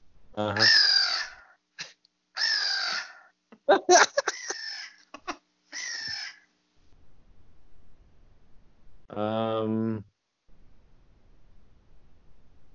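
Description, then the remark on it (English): A series of harsh, raspy caws from a crow, several loud calls in quick succession, then a quiet pause and one last drawn-out caw, with no talking. “It was a crow.”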